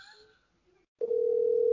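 signal or alarm, phone call dialing out

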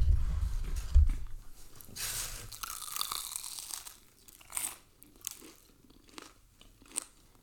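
food or drink, crunchy food being chewed

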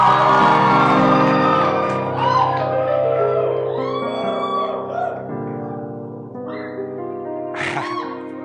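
crowd, audience screaming and shouting

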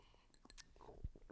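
food or drink, sipping water

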